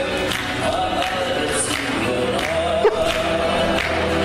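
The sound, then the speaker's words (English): A dense, steady wash of crowd noise from a home-video recording of a live singing performance, with scattered, irregular claps popping out now and then, one sharper clap standing out near the end of the murmur. “It just sounds like a bunch of noise with random clapping.”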